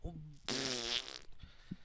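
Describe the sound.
A loud, buzzy fart sound effect from a soundboard blares for under a second, right after a brief bit of talking, then cuts off abruptly into quiet background murmur.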